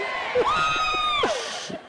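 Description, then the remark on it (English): A crowd of men boos in a loud, sustained wave of mixed voices, one drawn-out jeering tone rising above the rest before the noise tapers off. “Men are booing.”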